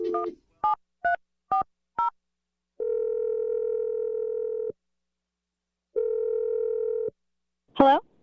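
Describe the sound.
A phone is dialed with five quick, evenly spaced keypad beeps, followed by two long, steady ringing tones separated by a pause of silence, then a brief voice answers.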